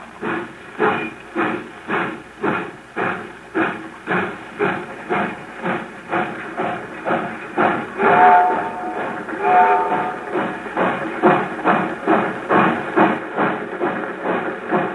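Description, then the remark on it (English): A steam train pulls out, the locomotive chugging along with a steady, rhythmic chuffing and constant hiss, the beat holding firm throughout while a brief tonal squeal rises partway through. “I get really sick when I think about the train pulling out.”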